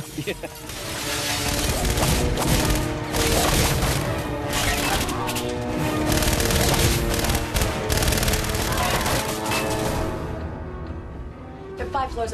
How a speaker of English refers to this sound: You've got both machine gun fire and staff weapon blasts. You know, they should be cutting the place to pieces.